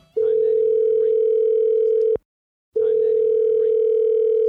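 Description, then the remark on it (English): A loud, steady telephone tone rings out while a call is placed to Joe Pesci, sounding in two long unbroken stretches separated by a brief silence, with no voices present. “let's go ahead and get Joe Pesci on the phone right now.”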